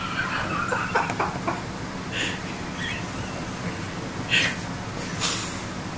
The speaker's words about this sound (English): Are you deflating a fucking whoopee cushion?